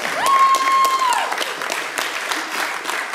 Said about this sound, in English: Why don't you give your own selves a good clap offering and give God praise?